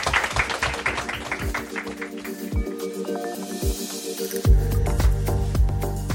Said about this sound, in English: I think now we should have just a nice round of applause. Thank you.